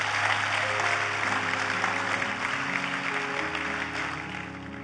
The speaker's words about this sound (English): Hallelujah. Clap, clap. It's good to clap for Jesus.